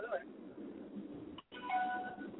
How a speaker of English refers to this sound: That was our beep. It was late. It was a late beep.